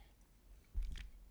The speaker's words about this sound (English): And I'll take another sip of my paraphernalia.